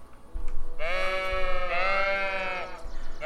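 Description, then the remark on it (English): Sheep bleat loudly and insistently, one long wavering cry swelling into another with rich harmonic overtones, sounding agitated, with no talking over it. “You head outside, and you see that your sheep are kind of in a little bit of chaos. They seem very agitated about something, but you don't really see anything that could be upsetting them.”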